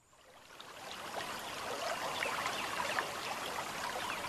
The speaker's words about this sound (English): The slow, choppy waters erratically splash up against the obstruction, an offbeat rhythm banging into an island of rusted steel. As the Ohio River flows towards the Mississippi, its waters make their way through the American Midwest.